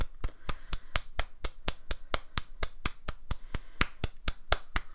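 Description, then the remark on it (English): Applause in the form of steady, rhythmic clapping: about twenty sharp, crisp claps in even succession, fairly loud, with no talking over them. “Round of applause for y'all too, because it's tough.”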